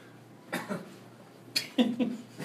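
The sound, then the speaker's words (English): A few deliberate, forced coughs: a pair of short bursts, a pause, then three more harsh coughs in quick succession, loud and dry. “I had to force a cough.”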